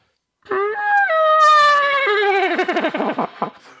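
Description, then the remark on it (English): A muted trumpet, its valves pressed halfway down and shaken back and forth as the lips buzz, whinnies like a horse: a strong nasal tone starts high, then wobbles and shakes downward in quick pitch bends, ending in short fluttering bursts, loud and alone. “But basically, I'm just pressing the valves halfway down, so the air kind of gets muted inside the trumpet, and then I'm just kind of shaking it a little back and forth so that my lips kind of create that hoarse neighing sound.”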